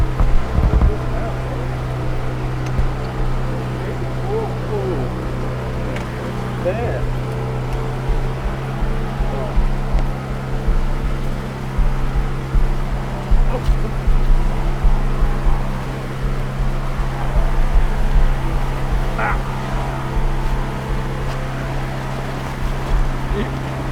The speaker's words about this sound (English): Gonna be good. Field trip on a boat. No better kind. Kinda wet. It's a boat.